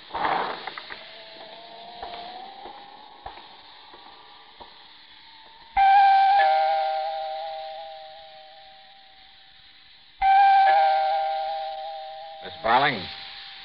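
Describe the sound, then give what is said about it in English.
The doorbell of the single apartment on a seventh floor rings twice, each ring a loud, steady buzzing tone that slowly fades over several seconds, following quiet clatter, with a short warbling sound at the end. “I see the door's open like it usually is, but maybe you better ring, sir.”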